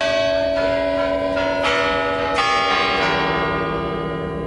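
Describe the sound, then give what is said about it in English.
The clock-tower bells of the Spassky Tower at the Kremlin in Moscow chime in a slow melodic sequence, each strike ringing with rich overtones that blend into a sustained, resonant wash, loud and spacious with no voices. “Oswald likely heard these famous chimes of the Spassky Tower in the Kremlin”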